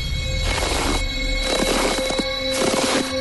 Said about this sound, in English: How many footsteps did we play? 14. Yep, we did. We better prove it. Hang on a second. Here's the first one. Here we go.